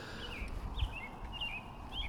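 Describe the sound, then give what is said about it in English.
A robin sings a string of thin, warbling phrases in the late dawn chorus on a calm day with little breeze. The short bursts repeat over a steady low outdoor rumble with no talking. “Those robins, man, they know how to go for it.”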